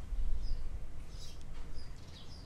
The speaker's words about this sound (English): I'm actually here in this yard. You probably hear birds or something. I see this little bird here. I see birds all the time here.